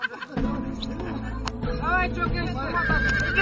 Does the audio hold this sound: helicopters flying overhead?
no